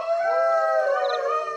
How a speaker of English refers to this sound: That does not sound like a normal wolf. It also sounds like it's getting closer.